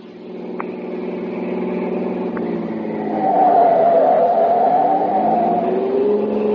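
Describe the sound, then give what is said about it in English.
A car engine hums steadily at speed as the car rushes the Colonel back to the base, its pitch rising as it accelerates partway through and then holding a loud, sustained whine, with no voices. “The car's going as fast as it can”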